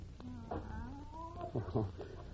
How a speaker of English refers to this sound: That's just Professor Kimberly's cat. No one's been able to get near it since the professor's death. How'd it get in here? Probably followed us in when we opened the door. It's been sulking around the building for days.